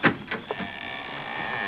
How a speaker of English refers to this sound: That door don't sound like it's ever been opened.